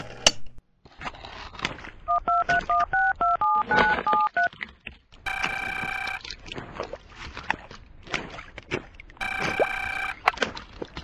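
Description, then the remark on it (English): A rapid run of about eight telephone keypad dialing tones beeps out clearly, followed by two longer, buzzy electronic tones a few seconds apart over a busy background. “Try the next to next last number now.”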